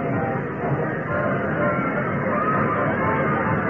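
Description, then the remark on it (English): A dense, steady murmur of many voices, an indistinct crowd bustling at a train station with no single speaker standing out, holding at an even level throughout. “We're coming into the station. Oh, Will, look at the crowd.”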